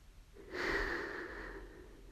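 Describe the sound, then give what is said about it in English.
A single long, breathy blow of air onto a forehead, steady, rising suddenly and trailing off over a second and a half, with no talking around it. “And Jesus walked up to him and pushed his lips against Aragorn's forehead and blew.”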